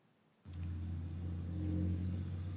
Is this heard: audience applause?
no